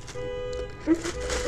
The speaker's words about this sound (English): I'm sorry for the alarm in the background.